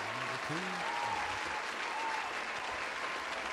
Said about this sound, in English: Hit my applause.